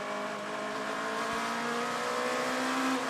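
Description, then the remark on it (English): A race car engine roars loudly and continuously as it passes on track, a dense, steady mechanical drone whose pitch climbs slightly toward the end, with no voices. “The 7 car that we just passed there by the number 7 car we rode on board there for just a few minutes.”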